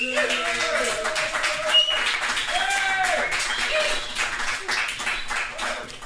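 An audience at the Stag's Head applauds steadily for about six seconds as the first guest, a band's lead man just back from LA, is brought on, a dense, even wash of clapping with scattered cheers and whoops rising above it.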